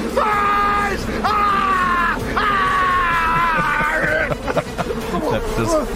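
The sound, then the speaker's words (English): A person screams loudly three times in quick succession, each a long, strained, high-pitched cry, the third the longest, with a murmur of other voices and commotion underneath. “A study in Australia found that snakes can hear you scream.”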